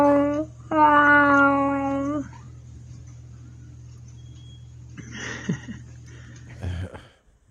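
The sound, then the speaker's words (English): A cat lets out two long, loud, drawn-out yowls back to back, followed by quieter rustling and a brief faint meow near the end, with a steady low hum underneath. “Oh, speaking of cats.”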